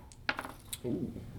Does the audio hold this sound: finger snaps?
no